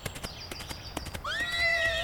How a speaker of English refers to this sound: Yeah, look at him go! That horse is out of its mind!